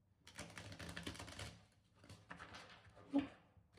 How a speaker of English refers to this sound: And as I shuffle the cards, please do leave comments, likes, share, and subscribe to the channel.